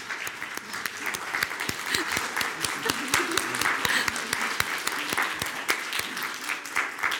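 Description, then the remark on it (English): A standing audience at Helotes Hills United Methodist Church applauds steadily for about seven seconds to welcome new members. Dense overlapping claps form a sustained wash, a few sharper individual claps stand out, and faint voices are mixed underneath. “And if you agree, will you just stand and clap for them?”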